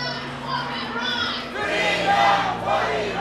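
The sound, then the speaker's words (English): Thousands of protesters marching in the streets of Melbourne shout and chant together, including the chant 'Zan, Zindagi, Azadi' (Woman, Life, Freedom): a dense roar of overlapping cries that swells louder halfway through, with a steady low hum beneath. “Thousands of protesters are marching in the streets of Melbourne.”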